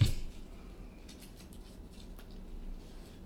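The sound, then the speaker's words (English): A deck of cards being shuffled, a series of quiet, crisp papery riffles and flicks over a low steady background hum, with no one speaking. “was shuffling and then revealed utter failure”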